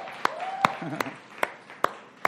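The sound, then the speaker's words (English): A church audience clapping in praise of God in a steady rhythm, six sharp, fairly loud claps spaced evenly about every half second, with faint murmuring voices underneath. “If you did that, we're clapping for you.”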